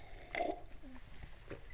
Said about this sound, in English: Let me just have another sip of our Dr. Pepper. Cheers. And we'll continue here.